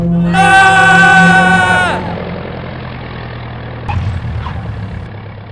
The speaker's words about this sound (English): The engine is failing. I'm gonna have to make an emergency landing. Brace for impact. We're going in for a hard landing.